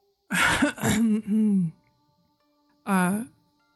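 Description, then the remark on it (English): A woman clears her throat: a voiced, drawn-out rough hum followed after a pause by a shorter second clear, with no other sounds around it. “She passes it off as clearing her throat.”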